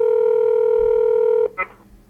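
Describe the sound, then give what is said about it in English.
A steady, loud telephone tone hums for about a second and a half, then cuts off into a brief, brighter electronic beep before fading to quiet line hiss. No one speaks. The call is being placed to a family home. “If I call home, the phone is immediately given to my father.”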